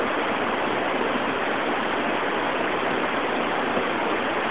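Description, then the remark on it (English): Steady analog TV white-noise static, presented as representing cosmic background noise, hisses at a constant, fairly loud level for the whole stretch, a dense, unbroken rush with no voices or other sounds. “Analog TV white noise.”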